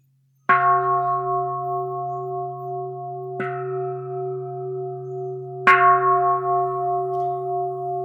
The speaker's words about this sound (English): May the sound of this bell ring throughout the universe, awakening all beings to joy and equanimity.